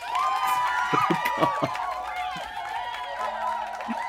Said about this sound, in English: And there's just raucous cheering. And the bartender is just slamming down glasses.